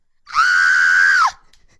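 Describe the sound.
A woman's voice lets out a single loud, sustained high-pitched shriek of surprise, lasting about a second, a reenactment of her reaction when a door was opened; no talking around it.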